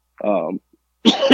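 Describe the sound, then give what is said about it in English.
Two raspy bursts of coughing from a common cold: a voiced, throaty rasp followed a moment later by a harsh, noisy cough, both loud with brief silence between them. “So I just have the common cold, but it's pretty brutal. I've been coughing and coughing for days.”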